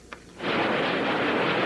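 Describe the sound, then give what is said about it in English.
A short sharp crack, then a heavy explosion erupts into a loud, sustained roar that rumbles on without fading, like a bomb blast amid cannon fire: Yugoslav Air Force bombs, rockets and cannon fire striking Slovenian militia targets in Slovenia. “The Yugoslav Air Force dropped bombs and rockets and cannon at Slovenian militia targets throughout the day.”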